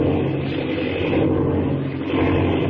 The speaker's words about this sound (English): Look, out and back. You can see your wing lights. You're right. There is a plane back there. And they're shooting. With a machine gun.